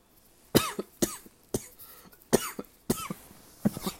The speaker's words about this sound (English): I'm so sorry, guys. Every time the cough gets that bad, I try and minimize my lungs so I can cough them out and die on the spot.